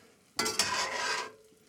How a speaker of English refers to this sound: So now I move it over with my tongs, dropping my pasta in.